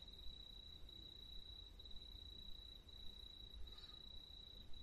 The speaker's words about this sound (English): I'll just get the cicada noise again.